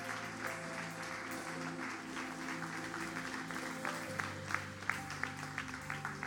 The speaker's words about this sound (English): If you can just follow them out, let's give them a big round of applause. Let's give them a big God bless you. Amen. Amen. That's it. Let's give them a clap.